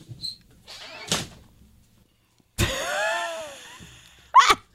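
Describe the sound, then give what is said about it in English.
A door creaks open with a long, drawn-out squeal as someone comes in, drops something and leaves the door open, bracketed by a couple of sharp thuds like something being dropped and the door knocking. No one speaks. “She just comes in, drops it, leaves the door open.”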